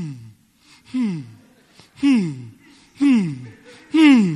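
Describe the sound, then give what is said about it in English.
Heavy, labored breathing in a steady rhythm: about four loud, voiced gasping breaths roughly a second apart, strained, like someone imitating a struggling wheeze. “You are breathing like you are on life support.”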